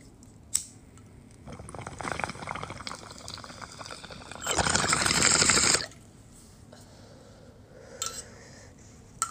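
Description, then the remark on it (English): A sharp click, then a steady watery bubbling from a glass beaker bong made by Milky Way Glass that swells into a loud, rushing gurgle for about a second before cutting off, followed by quiet and a couple more brief clicks. “I'm currently packing the bong, so I'm gonna take a rip with you guys.”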